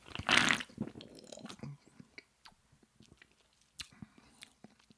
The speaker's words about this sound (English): I need to take another sip here. Yeah, I mean, it's one of my favorite flavors of the new flavors of Diet Coke.